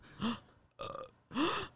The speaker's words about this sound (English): can burp on command? You can't? That's like a third grade reading level skill. Can you do that?